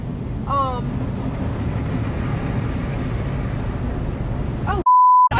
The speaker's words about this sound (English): I keep swearing on the air! No swearing on the air. We're gonna have to bleep that out.